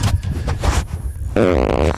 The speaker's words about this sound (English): Wait, I got a fart